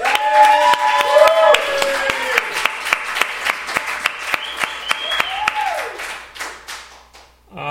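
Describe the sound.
A crowd applauds steadily for several seconds, dense clapping with a few sharper claps standing out, mixed with whoops and cheering voices, before fading out near the end.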